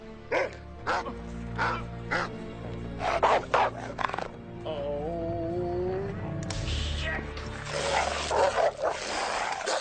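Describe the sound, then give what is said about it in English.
A dog, released to attack, barks in sharp, repeated bursts, then breaks into a whine before erupting into loud, frantic snarling and growling as if lunging in an attack. “And then everyone else shows up around Benny, and then they release the dog.”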